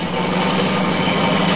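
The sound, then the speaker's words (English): A car engine roars steadily as it speeds too fast toward the listener at night. It makes a dense, rushing hum that swells slightly in loudness over a second and a half, with no voices. “Seems to be travelling at quite a rate. Too fast, even this time of night.”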